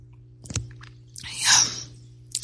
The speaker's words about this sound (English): Time for me to have a little sip of my tea here.